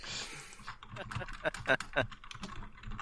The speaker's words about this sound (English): Pause, start typing. All caps, yes.